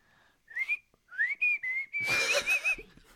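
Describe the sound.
A person whistles a short, wavering tune of several sustained notes, fairly loud, ending with a breathier, noisier stretch before trailing off.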